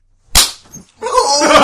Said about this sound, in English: I think it's all about angles there. I mean, I had the good angle. I had the good angle. I had to come across like 3 feet to get at him. So I just got punched in the fucking face by two dudes